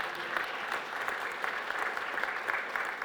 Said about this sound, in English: Let's give an applause to the Lord Jesus.